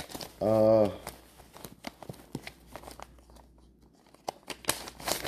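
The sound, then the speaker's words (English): Irregular crackling and rustling of a piece of paper being taken out and handled along with a pen, crinkled, with sharp bursts scattered throughout and a brief voiced sound near the start. “So let me get a piece of paper and a pen out, and you can kind of just ride this wave with me.”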